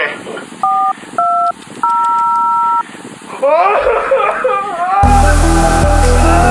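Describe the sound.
Three touch-tone keypad beeps from a phone being dialed, the last held longer than the first two, followed by voices talking and then a loud, harsh burst of distorted noise.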